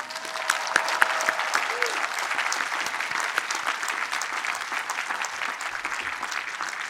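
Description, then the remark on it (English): Steady applause from a large audience at an engineering school graduation ceremony, given for the graduates' parents and families, a dense patter of many clapping hands that holds at an even level for several seconds, with faint crowd murmur beneath. “As excited as all you are today, there's another group here that is beaming with pride and that deserves a big round of applause.”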